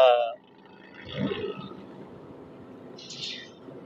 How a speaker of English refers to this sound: A car just drove past and had to downshift to make the pass. It's quite loud.